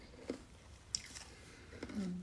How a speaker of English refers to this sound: I hope you can't hear that ice you're chewing. I thought that was popcorn.